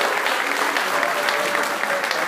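An audience at Shippensburg University applauds steadily, many hands clapping in a dense, even wash of sound that stays loud and unbroken throughout, with no voices standing out.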